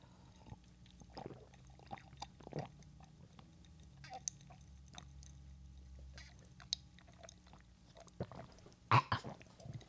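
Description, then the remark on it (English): Someone chugs nearly a whole drink in a ten-second chug, a run of soft, wet gulping swallows, irregularly spaced over a low steady hum, ending with a couple of louder gulps. “You can hear every chug.”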